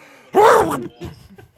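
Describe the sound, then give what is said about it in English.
A voice imitates a loud, strained sneeze of someone throwing his back out while sneezing, a single harsh burst whose pitch rises then falls, followed by a few quieter groaning vocal sounds. “And another Ron Swanson threw his back out while sneezing.”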